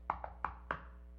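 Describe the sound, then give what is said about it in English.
Four sharp knocks in a quick rhythmic pattern, tap-tap then a pause and two more, like knuckles rapping on a wooden surface. They imitate the drum beat that people in Roman times, in Jesus' day, would beat while walking around. No voices. “That's where we get that knock from, if you've ever heard that. They would walk around and beat that drum”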